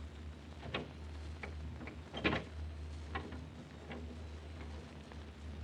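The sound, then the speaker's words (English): A door being unlocked and opened: a series of sharp mechanical clicks and clunks, one heavier rattle in the middle, over a steady low background hum, with no voices. “The lock turned, Inspector. I'll open the door.”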